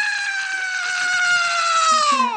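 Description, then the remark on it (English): A loud, sustained scream that holds one high pitch for about two seconds, sagging slightly toward the end, with a rough, gargly rattle underneath. No other sounds or talking. “You have a little gargle to your scream.”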